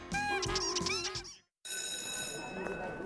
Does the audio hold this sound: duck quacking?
yes